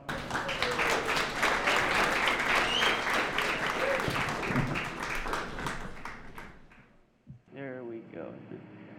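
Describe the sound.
A crowd applauds, a dense, steady patter of many clapping hands that holds for about six seconds, then thins out and fades before a single voice starts speaking.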